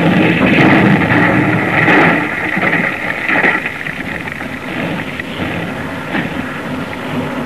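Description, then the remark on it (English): A heavy ship's engine churns with a loud, steady mechanical rumble and clatter, easing slightly after a couple of seconds but running on throughout, with no voices. “Engine stop, sir.”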